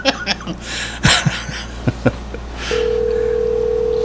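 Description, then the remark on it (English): A few short bursts of chuckling and shuffling noises, then a steady, unbroken phone tone starts and holds through the end as a phone call is placed to a man and waits for him to answer. “Let me see if I can give him a call, see if he'll answer.”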